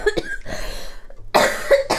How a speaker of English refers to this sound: So attractive. I'm sorry for coughing on air.